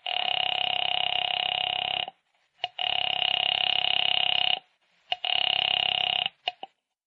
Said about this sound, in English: knowing how foolish it was, knowing it, went to the phone and dialed. Silly. Silly.